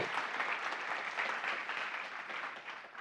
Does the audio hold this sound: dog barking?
no